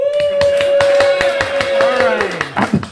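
Steady, rapid clapping in a regular rhythm, loud and sharp, from the audience of the Celebrate Love Football show clapping for enjoying the football match, running under a long sustained vocal whoop or cheer that slides lower near the end.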